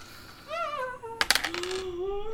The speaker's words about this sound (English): I don't like the sound of dice rolling. I rolled a three.